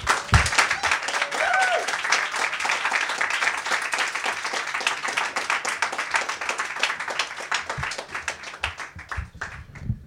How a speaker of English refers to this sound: So that poem was a finalist for our contest as well. Yeah, let's give her a round of applause for that.